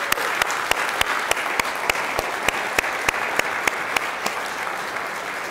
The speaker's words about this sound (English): And I think it would be appropriate for all of us to give all of the ladies in the house a round of applause this morning.